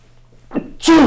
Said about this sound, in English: Yeah, I got a sneeze out of nowhere.